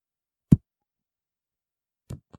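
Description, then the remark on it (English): A basketball being dribbled bounces on a hard floor: one heavy, booming thump, a long pause, then two quicker bounces, the last one faint. No voices. “You're actually dribbling the ball faster than that, but that's how it sounds when it hits the ground.”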